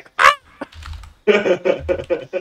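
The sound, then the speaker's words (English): A voice imitates a bird's call with a sharp nasal squawk followed by a run of loud, honking calls in quick succession, with a low rumble between them. “Fucking Kenku, like what? Bird. Bird.”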